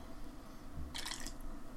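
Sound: sipping a beer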